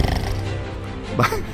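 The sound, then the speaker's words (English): A person's voice imitates a tiger roar: one sustained, gravelly growl that swells into a strained, rising burst near the end before trailing off. “I thought that was a snore. No, it was a roar.”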